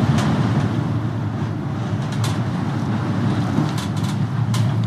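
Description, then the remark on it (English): Steady, low mechanical rumble inside a moving cable car rocking back and forth 50 meters above the ocean, with a few faint, brief clicks and creaks scattered through the constant drone. No voices. “The cable car rocks back and forth, swaying 50 meters over the ocean”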